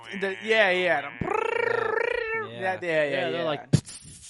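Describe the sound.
A voice imitates loud cicadas: wavering, whiny tones give way to a sustained, rapidly pulsing buzz, then more high warbling calls, ending with a sharp click.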